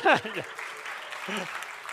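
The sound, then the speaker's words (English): A short burst of polite courtesy applause after a joke at Sanctuary, a steady crackle of scattered claps, with a few brief vocal sounds from the crowd mixed in at the start and near the end. “Oh, the courtesy laughs, the courtesy applause that warms my heart.”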